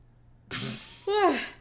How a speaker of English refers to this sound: So excited you had to yawn about it. I was so excited that I had to yawn.